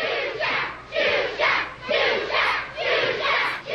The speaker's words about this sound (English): Okay, we just have a crowd screaming for Zsuzsa. Oh, this is good. Like, early 90s TV graphics. I love this. And again, the crowd goes wild.